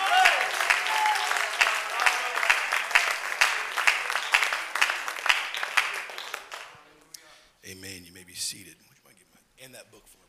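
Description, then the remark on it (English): A church audience claps together in dense, sustained applause for several seconds as praise to God during a worship service, then it fades out and a voice takes over. “Let's give God a hand clap of praise all over this place.”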